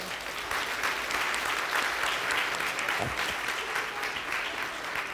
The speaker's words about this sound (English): Give God a hand clap.